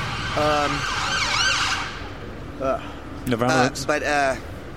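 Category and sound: vehicle, ambulance siren passing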